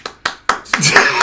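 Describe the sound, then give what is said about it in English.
Four sharp, evenly spaced hand claps ring out, a short applause-style burst, before a voice and busy noise take over and fill the rest of the moment. “Y'all got that round of applause.”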